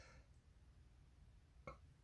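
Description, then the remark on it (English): A short, quiet burp with a brief voiced croak near the end, over a steady low rumble. No one speaks. “Sorry, excuse me for the burp.”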